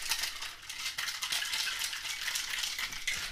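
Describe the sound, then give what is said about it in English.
A cocktail shaker holding a margarita-style drink with agave syrup and triple sec is shaken hard and steadily, a continuous bright rattle of ice against metal with a quick, even rhythm, loud throughout and without any voices. “As usual, we shake.”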